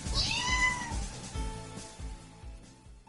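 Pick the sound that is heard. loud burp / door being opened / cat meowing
cat meowing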